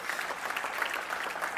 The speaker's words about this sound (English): Clap your hands for the Lord. Would you do that?